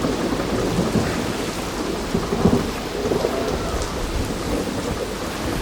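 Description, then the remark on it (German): Heavy rain pours down steadily in a dense, continuous wash, with low thunder rumbling underneath throughout. No voices are heard. “Jetzt gießt es auch noch.”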